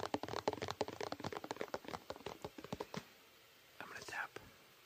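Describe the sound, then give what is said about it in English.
Rapid, crisp fingertip tapping on a canister, dozens of quick uneven taps for about three seconds, then the tapping stops and a soft breathy whisper-like sound follows. “I'm gonna be tapping today on a lot of different things. This canister.”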